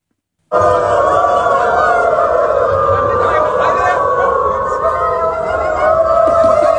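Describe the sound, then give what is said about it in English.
Around 1,000 people identifying as other species, gathered at the railway station in Berlin, Germany, howl like dogs together, several long wavering tones overlapping and sliding in pitch, loud and unbroken for several seconds over a rumbling crowd noise. “where in Germany last month, around 1,000 people identifying as trans species actually met in Berlin at the railway station at Germany's capital to howl at each other.”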